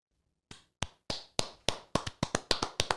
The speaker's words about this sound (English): Let's just do a, give me a clap.